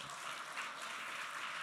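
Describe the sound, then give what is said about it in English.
An audience claps together in celebration, a dense, steady wash of many hands with no pauses and no voices, holding an even loudness throughout the short stretch. “I want to take a second to celebrate the, yeah, we can clap for that.”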